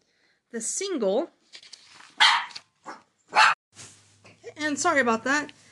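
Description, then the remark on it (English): A small dog barks several times, sharp high-pitched yaps and yelps coming in irregular bursts with brief pauses between them. “My little doggy started barking.”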